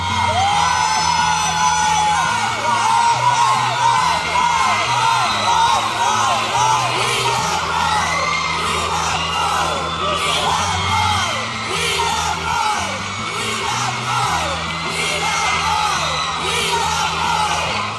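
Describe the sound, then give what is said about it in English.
A large crowd in New York City yells and cheers continuously, shouting the name Roy as he gets off a plane, a dense wall of overlapping shouts and whoops filling the whole stretch at a steady, loud level with a low rumbling undertone. “They were shouting, Roy, Roy, Roy, Roy.”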